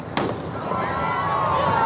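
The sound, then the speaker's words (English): A single sharp cannon boom starts the Sydney to Hobart yacht race on Boxing Day, then gives way to a steady roar of wind and outdoor noise amid sunshine and pelting rain, with faint, indistinct voices underneath. “The Sydney to Hobart yacht race began with a cannon shot on Boxing Day amid bright sunshine, wind and pelting rain.”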